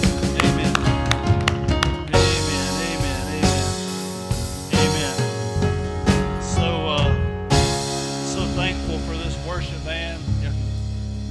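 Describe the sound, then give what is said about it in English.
An audience at a church service applauds the worship band with steady, dense hand clapping that holds for several seconds, with sustained musical tones ringing underneath the clapping throughout. “Give this worship band a hand clap of praise, please.”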